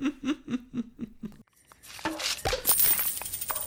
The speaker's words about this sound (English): Ham's cork bursts out and coins fly everywhere